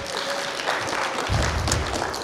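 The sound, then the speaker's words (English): A church audience breaks into clapping, a dense, steady wash of many hands that swells slightly partway through, sustained across the whole moment with no voices standing out. “So you can clap.”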